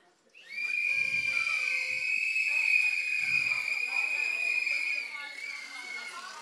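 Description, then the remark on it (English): An audience blows party horns together to vote for the answer "partner" in a show of hands-style poll: a loud chorus blaring at once, a buzzy, reedy high drone held steadily for about six seconds before thinning slightly at the end. “So anyone who thinks partner, party horn.”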